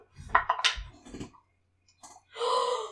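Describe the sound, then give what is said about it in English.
A few hard clattering knocks tumble across a tabletop, followed after a short pause by a longer dry rattle, like dice being shaken and thrown, as a player rolls a different die for an insight check in a tabletop role-playing game and gets a natural 20. No one speaks. “I'm going to use a different dice because that one didn't roll well before.”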